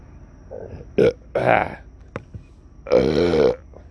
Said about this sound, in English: Hey, maybe if I burp and say raccoons, I'll get some raccoons to listen, you know?